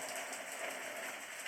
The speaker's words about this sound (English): And notice how it's releasing as the rain is deepening inside of you. The rain is increasing.